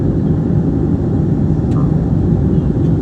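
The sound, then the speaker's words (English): A small propeller plane's engine drones loudly and steadily throughout, a constant rumble in flight as the pilot flies home. “This guy was coming home in his little plane and he sees this down on the ground.”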